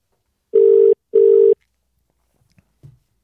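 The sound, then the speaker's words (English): A telephone ringback tone on an outgoing call to order food: two loud, steady buzzing pulses in quick succession, followed by near silence and a couple of faint clicks. “Here we go. I'm ringing.”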